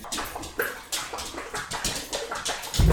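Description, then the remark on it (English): A dog laps up water, a quick run of wet slurping splashes repeating in an uneven rhythm, with no talking over it. “slurping some water.”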